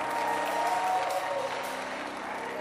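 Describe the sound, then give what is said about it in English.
An audience claps their hands in a dense, steady burst of applause with crowd murmur mixed in, sustained and fairly loud for a few seconds. “Ah, clap your hands, your prosperity.”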